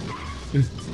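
Tires squeal and skid over a car's engine noise, with a brief louder lurch midway through, sounding tinny as it plays from a movie dubbed off a VHS tape; the cars jerk around without really going anywhere.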